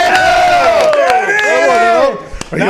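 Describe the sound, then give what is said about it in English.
A crowd cheers loudly with overlapping whoops and rising, wavering yells, while a few sharp claps snap through the noise; the roar drops off briefly near the end before picking up again. “I clapped. And I cheered.”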